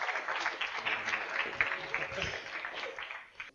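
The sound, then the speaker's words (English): An audience applauds three volunteers brought to the front for their bravery, a dense, steady patter of many hands clapping at moderate loudness for a few seconds, with a murmur of voices mixed in before it fades. “Shall we give him a round of applause for their bravery?”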